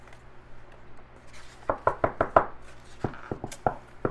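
A series of sharp knocks on a wooden floor, fairly loud, coming in two irregular bursts of quick raps with a short pause between them, over a low steady hum; someone is knocking to check whether the floor sounds hollow.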